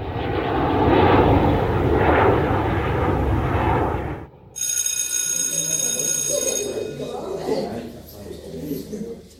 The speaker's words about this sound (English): the airplanes used to fly over. Although it was a nuisance for my parents, it was exciting for me as a young kid growing up. So I always wanted to be in the cockpit flying those planes flying over my home.